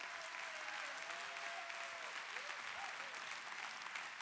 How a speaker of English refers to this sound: Clap your hands.